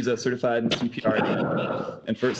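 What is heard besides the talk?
sneeze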